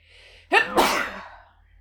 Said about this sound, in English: …'s going to sneeze.